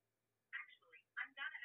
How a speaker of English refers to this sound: My bad. My phone went off.